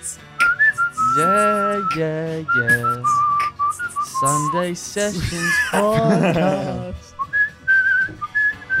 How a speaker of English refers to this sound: who's a professional whistler, and he's going to whistle the Up theme song